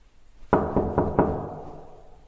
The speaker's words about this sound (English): Oh, and this is the sound of me leaving my apartment to go and knock on his door.